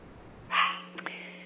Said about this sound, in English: I hear a little dog barking here.